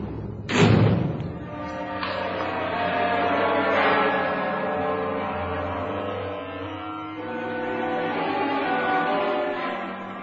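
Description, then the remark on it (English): A heavy steel cell door slams shut once, loud, its clang ringing out into a long metallic reverberation. “For a while, Arthur stared at the steel door that separated him from freedom”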